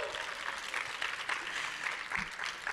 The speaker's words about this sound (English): Thanks. Thank you, guys. We'll find any excuse at this point to meet you guys. Yeah. Clap.